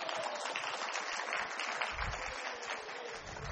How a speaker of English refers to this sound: You'll get a nice round of applause for your help.